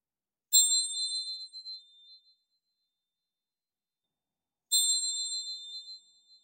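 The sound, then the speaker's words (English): Two bright metallic meditation chime strikes marking the end of a meditation, a few seconds apart, each ringing out clearly and slowly fading into silence, with no voices present. “As we end the meditation now with the sound of the chimes.”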